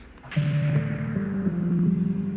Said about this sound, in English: That was just done on a keyboard. I just played a couple of notes with some sound in the background, like a... Very trippy. Yeah, like a reverb sound.